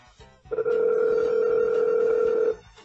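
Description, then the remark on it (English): A phone line rings out on the caller's end: one steady, buzzy ringback tone lasting about two seconds, fairly loud, with no voices and nobody picking up. “Get somebody on the fucking phone. No one's answering.”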